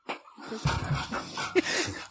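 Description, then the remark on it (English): A female dog whimpers and lets out a few short, high yips in a restless stretch of whining with no one talking. “My dog is now snoring here.”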